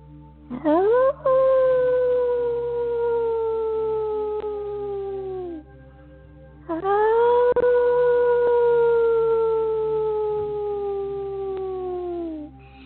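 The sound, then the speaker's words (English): A person howls like a wolf twice, each long sustained call rising quickly then slowly sliding down in pitch, with a short pause between them. Fairly loud, no talking. “So still looking up in the moon, inviting you into this moment with a deep inhale, allowing yourself to howl and projecting forward the love with your sound.”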